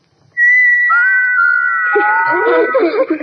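Little carved figures whistle: a steady high tone starts abruptly, joined by a few more sustained whistles, then breaks into a busy, warbling, chirpy chatter of overlapping whistling notes.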